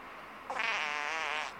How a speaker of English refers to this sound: Normally, if a dog farted in a crowded van, you would want to throw yourself from the vehicle for a little fresh air.